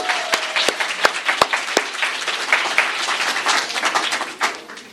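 An audience gives a round of applause for the maker of a video, applauding steadily for about five seconds, a dense patter of many hands with a few sharp, louder claps standing out early on, and no one speaking over it.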